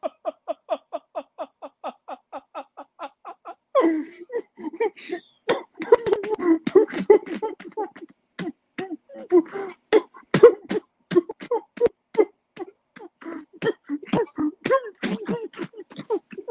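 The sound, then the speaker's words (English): A prolonged coughing fit: a rapid run of short, rhythmic hacks gives way to harsher, ragged coughs and gasping bursts that carry on for over fifteen seconds. “going through a little fit right now, a coughing fit, a laughing fit, a clapping fit, if you will.”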